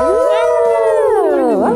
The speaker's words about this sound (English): Hashtag HowlNoise.